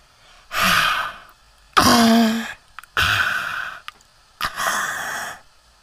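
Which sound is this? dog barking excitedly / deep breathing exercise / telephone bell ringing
deep breathing exercise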